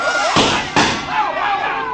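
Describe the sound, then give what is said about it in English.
Two sharp, loud gunshots fire in quick succession in a funhouse, under half a second apart, each a hard crack that fades out while a murmur of voices carries on underneath. “My shot got to him, but he kept coming.”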